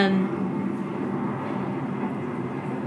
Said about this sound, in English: I'm going to wait for this plane to pass.